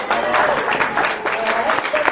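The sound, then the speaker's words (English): An audience claps for a volunteer: a dense, steady wash of many hands clapping at an even loudness for about two seconds, with some voices faintly mixed in. “Give a clap for a volunteer.”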